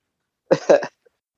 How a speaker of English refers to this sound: I'll throw over to next to the man that just introduced himself with a nice big cough,